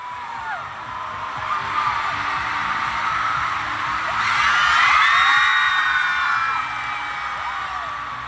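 A huge crowd of fans screaming at the moment a couple kiss, a dense wall of high-pitched shrieks and whoops that swells to a louder peak midway, then eases slightly but keeps going to the end.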